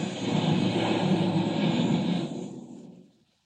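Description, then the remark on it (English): A loud, steady roar of airplane engines as the planes crash fills the first two seconds, then thins and fades away to silence. No voices are heard. “I crashed the planes.”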